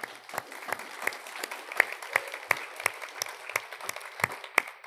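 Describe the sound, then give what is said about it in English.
A church audience applauds the news that Roe v. Wade has been overturned, many hands clapping in a dense, irregular patter with sharper individual claps popping out above the wash; no voices rise over it. “We can applaud that.”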